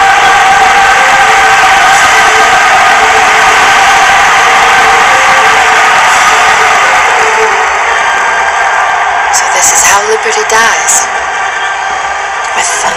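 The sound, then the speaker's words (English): A large film crowd bursts into thunderous applause as the Republic is declared reorganized into the First Galactic Empire, a dense, steady roar of clapping and cheering that holds for the full stretch and eases slightly toward the end. “Liberty dies with thunderous applause.”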